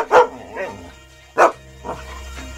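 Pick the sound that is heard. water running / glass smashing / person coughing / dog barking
dog barking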